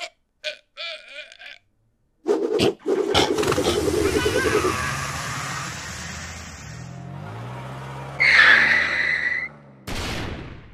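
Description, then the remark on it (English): A large vehicle, a school bus, roars in suddenly and speeds past, its engine pitch dropping as it goes, followed by a loud, sharp screech of skidding tires lasting about a second. “Was that a school bus?”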